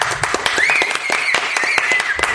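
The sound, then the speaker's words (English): A round of applause from a crowd: dense, irregular claps at a steady loudness throughout, with a thin, high whistle-like tone rising and then holding beneath them. No one speaks. “And why don't we give you guys a round of applause?”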